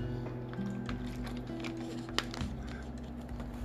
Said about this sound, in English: Let me drink some water. Hold on.